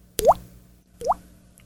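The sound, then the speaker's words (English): Two hollow, bubbly plops about a second apart, each a sharp click sliding upward in pitch like a water droplet, made by a mouth imitating a drip by clicking a finger against the side of the mouth; clear with no talking. “I can do a drip with my mouth.”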